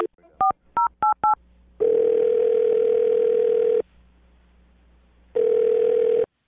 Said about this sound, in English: All right. I'm going to dial the phone number. Here we go.